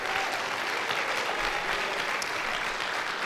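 An audience claps hands in praise to Jesus, a dense, steady wash of applause that stays loud and even throughout, with many overlapping claps and no voices standing out.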